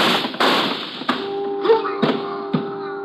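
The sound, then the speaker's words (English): Four or five sharp, cracking gunshots go off on a pier at irregular intervals, with a steady low humming tone running underneath from the second shot onward. “The shots came from my left and I can hear someone running along the pier.”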